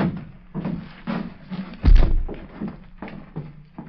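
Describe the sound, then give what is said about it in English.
A door opens and closes as someone comes in, with a heavy thud midway through and soft, irregular knocks and shuffles around it. No one speaks. “Listen, someone coming.”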